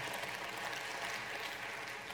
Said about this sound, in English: And yeah, you can clap if you want.